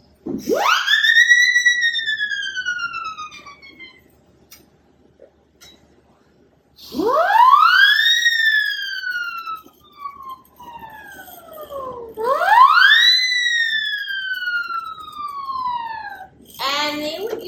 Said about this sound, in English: And then sirens from different siren whistles.